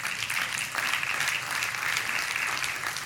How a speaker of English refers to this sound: Now, I want you to notice there's about four people clapping because the rest of us are praying that God would just simply heal us.